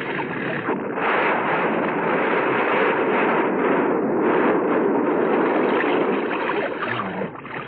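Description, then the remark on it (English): A crashed bus explodes in falling snow: a loud, steady rushing roar of blast and fire that holds for several seconds with no voices, then dips slightly at the very end. “I never saw a bus blow before.”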